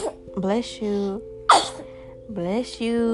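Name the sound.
sneeze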